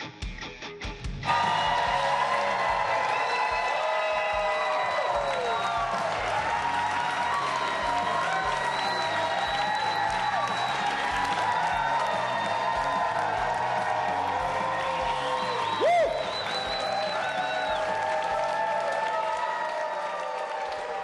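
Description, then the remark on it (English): A crowd at the bar on Holmgren Way applauds and cheers loudly and steadily for about twenty seconds at a special Inside the Huddle show with Donald Driver, with dense clapping, shouts and whoops, one sharp whistle rising above the noise partway through. “A crowd here tonight.”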